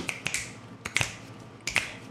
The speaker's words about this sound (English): But we need a Twin Peaksian sound effect. Oh, you're right. Some sort. What would that be? Everyone just snap.